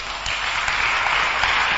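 A church crowd applauds steadily for Jesus during a sermon, a dense wash of many hands clapping at once, loud and sustained throughout with no voices standing out.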